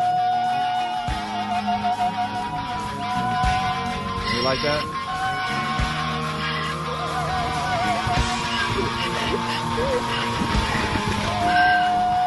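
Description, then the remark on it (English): A donkey's braying, with rough rising-and-falling harmonic heehaws, plays over a steady song with sustained tones throughout; a voice briefly speaks near the end. “Only I had no idea that we would be at some point playing a donkey over that song today.”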